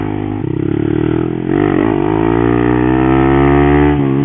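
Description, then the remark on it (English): A loud motorcycle with an aftermarket Yoshimura exhaust revs hard, its deep, raspy engine note rising and falling in pitch as the throttle is blipped and held, with no voices over it. “It's got a massive Yoshi exhaust on it. She's loud.”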